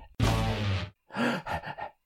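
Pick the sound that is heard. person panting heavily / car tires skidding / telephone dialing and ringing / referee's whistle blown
person panting heavily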